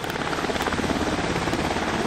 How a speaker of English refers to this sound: And I guess within about 40 minutes later, all of a sudden it's like, here comes this helicopter. Big, giant thing over the sky.